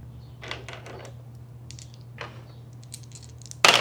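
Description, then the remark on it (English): A handful of dice clatters and rattles across a hard surface in scattered bursts of sharp clicks, ending with a louder, dense rattle as more dice tumble at once. No voices are heard. “That was a lot of dice.”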